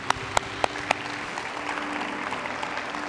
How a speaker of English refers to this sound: Let's give the Lord a clap offering one more time.